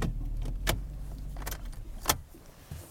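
A car engine idles low and steady while keys jingle in a few short, bright bursts, with small rattles and clicks in between, as a car parks before dawn in below-freezing cold about 200 yards from a sage-grouse lek in the sagebrush.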